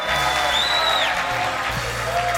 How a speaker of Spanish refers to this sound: Vamos a recibir con un fuerte aplauso a mi papá, espiritual y físico,